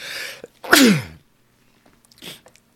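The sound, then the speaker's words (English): A sharp sneeze follows a quick breathy inhale, with a voiced, falling tail. A softer sniff or rustle comes shortly after; no talking. “And then, sorry, sneeze there for a moment.”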